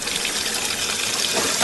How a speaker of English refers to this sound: Sometimes it bubbles and hisses when it comes out. In one scene, tap water from a well apparently tainted by drilling catches fire.